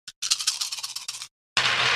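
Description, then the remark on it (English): Dice rolled in a game rattle quickly and steadily in a rapid clattering run, stop briefly, then give way to a loud, dense burst of rolling and tumbling noise. No voices are heard. “But let's roll these dice and see what happens.”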